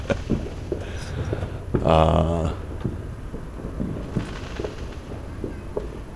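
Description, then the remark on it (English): Fireworks set off outside, with neighbors out front watching, pop and thump in a steady scatter of muffled bangs, with one louder, crackling burst swelling up partway through before the low rumbling pops carry on. “Yeah, Tim says he's trying to determine between the fireworks on the speaker and the ones outside.”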